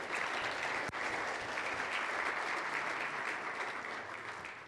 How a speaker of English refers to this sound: I want to say thank you, and I'd like us to give a hand of applause to all of those who have served so much.